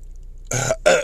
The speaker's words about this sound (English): excuse me. Let me clear my throat.